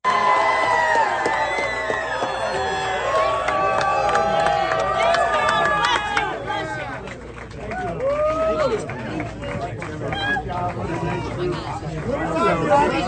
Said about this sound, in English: Here is a little bit of the crowd when he arrived in Iowa just a little bit ago. Take a listen.